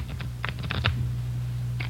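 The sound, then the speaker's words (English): A deck of playing cards is shuffled in a few quick, crisp bursts of flicking and snapping, over a low, steady background hum with no talking. “Give him a good shuffle, huh?”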